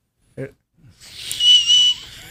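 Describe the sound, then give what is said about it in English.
A loud, shrill whistle made by squeezing the bottom lip, held for over a second with a breathy, airy edge, preceded by a brief vocal sound. “I can do the weird one where you squeeze your bottom lip.”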